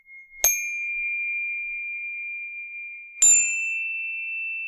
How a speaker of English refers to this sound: The chimes! The chimes of doom! Alright, we need to do a sound test for the chimes of doom!